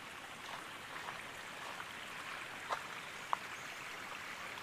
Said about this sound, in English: Sounds like there's a lot of water running somewhere. That's odd. That's different. Oh yeah, it's right here.